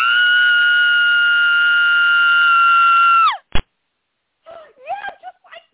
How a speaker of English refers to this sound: It is so dark in here. I mean, a killer could be right behind you, ready to strike. Imagine if we suddenly heard a blood-curdling scream.